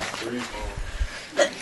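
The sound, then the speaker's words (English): A single sharp sneeze bursts out near the end, brief, following a few moments of low, indistinct voice sounds. “God bless you”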